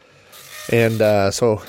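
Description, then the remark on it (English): A printer printing out material from a Commodore 64 starts up with loud, pitched motor whining in three back-to-back bursts, a steady buzzing hum broken by brief pauses, with no talking over it. “Let me get this started printing here. Okay, yeah, that's going to be loud.”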